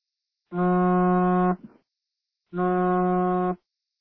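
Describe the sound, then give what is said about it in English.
Two long, deep foghorn-like blasts, each about a second, separated by a pause of silence; loud, steady low tones with rich harmonics and no talking. “Is that like a foghorn or something?”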